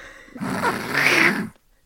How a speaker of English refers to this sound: I swallowed a yawn and it almost broke my larynx.